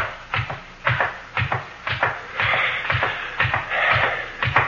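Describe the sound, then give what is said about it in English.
A steady series of footsteps thumps down a flight of stairs, roughly two heavy steps per second with scuffing between them, fairly loud, with no voices. “Down these stairs”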